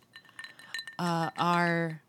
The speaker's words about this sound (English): Our ice cubes are rattling a little less cheerily.